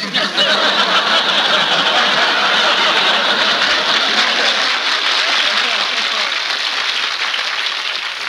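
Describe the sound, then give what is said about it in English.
A studio audience on Skelton's New Year's show breaks into sustained applause after a greeting from the sponsor, Mr. Raleigh, a dense, even wash of many hands clapping for about eight seconds and easing off slightly toward the end. “Please, there's two ways to take that applause, you know.”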